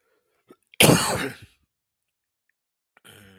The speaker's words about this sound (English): Excuse the coughing.